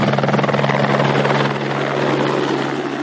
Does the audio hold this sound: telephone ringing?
no